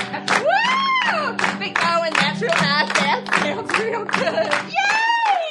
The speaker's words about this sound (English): Clap your hands real loud. I'd love to hear you cheer. We're gonna be clapping right now.